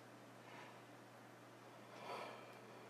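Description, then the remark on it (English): A quiet, breathy yawn: a soft intake followed by a longer airy exhale, with no talking and a low steady hum underneath. “Mercy, I knew that early yawn was coming.”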